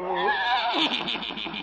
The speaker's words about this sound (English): There's Doc. And his horse and buggy.